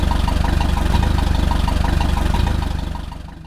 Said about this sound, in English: He goes and he starts up the lawnmower engine. It's real loud.